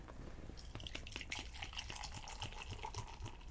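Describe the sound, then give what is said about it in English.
A red IPA being gently poured from a full growler, a soft continuous trickle with small splashy gurgles throughout, fairly quiet, with no one speaking. “It's basically to the rings at the top. And the very gentle pour.”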